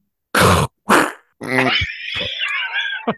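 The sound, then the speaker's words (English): A voice imitates a cannonball splash: two short, breathy bursts, then a longer gurgling, noisy vocal rush that trails off, with no other sounds. “What's that splash sounding like”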